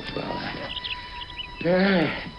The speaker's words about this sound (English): He's singing to the canary. And then the bird, of course, on cue, chirps back.